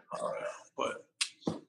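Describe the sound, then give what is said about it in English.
Dogs barking and growling as they play fight: a drawn-out growly yelp, then several short, sharp barks in an uneven burst, loud. “Sorry, my dogs are going crazy in the background.”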